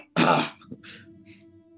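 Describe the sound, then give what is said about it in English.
A 9-year-old child in a button-down shirt coughs once, loud and harsh, followed by two softer, breathy bursts over a low, steady background hum. “There's those two blonde kids and the 9-year-old in the button-down shirt coughs, savages.”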